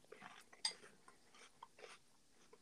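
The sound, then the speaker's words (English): Someone crunches a mouthful of cereal, a series of crisp, irregular chewing bursts with one sharper bite early on, faint and somewhat distant, with no talking. “That's a good crunch, that's right? A good crunch sound.”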